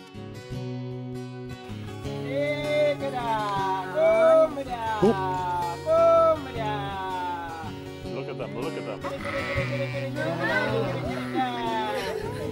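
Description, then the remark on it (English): Many sheep bleat in wavering, overlapping cries, fairly loud, as a shepherd calls them and other people try calling the sheep too, with chatter in the background. “So I hope you enjoy this little video clip of a shepherd calling his sheep and some other people trying to see if they can call the sheep too.”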